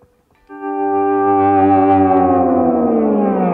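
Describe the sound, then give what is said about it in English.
A pedal steel guitar with heavy distortion enters after a brief pause, holding one loud, buzzy, harmonic-rich note that slowly slides downward in pitch. “So now you put distortion with it.”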